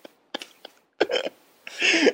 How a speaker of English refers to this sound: I had to clear my throat, but I don't know how to do that on a podcast. It sounded like you were cracking up. No, I was clearing my throat into my arm, but I don't have a sleeve on. So it didn't cover up the sound at all.